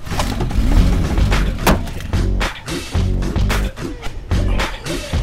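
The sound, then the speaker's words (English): A car engine cranks roughly as the key is turned, with loud, rhythmic mechanical jolts and clunks about once a second, as the faulty starter labors without catching smoothly. “That's some jolting. Does that car do all the time?”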